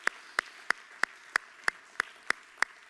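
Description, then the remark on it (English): An audience claps hands together in a steady unison beat, about nine sharp, evenly spaced claps roughly three per second, with no voices over them. “Come on, put your hands together and clap to the Lord.”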